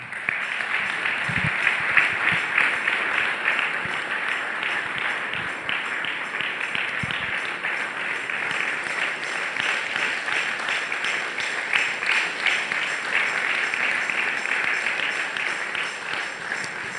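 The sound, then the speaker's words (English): A church audience raises an applause to the Lord, clapping steadily for about seventeen seconds, a dense, even wash of many hands clapping at constant loudness with no speech over it. “Church, if you have raised an applause to the Lord, it means that you have heard the word of the Lord.”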